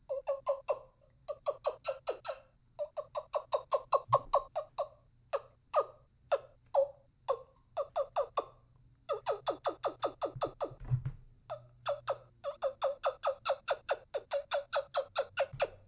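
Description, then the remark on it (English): A homemade turkey call made from a roller-ball pen with its end pulled off and its insides taken out is worked in quick runs of raspy, fairly high yelps and clucks, short bursts separated by brief pauses, all at a modest, not very loud volume with no talking. “But I could see where this actually could call a turkey in. It's not a very loud call”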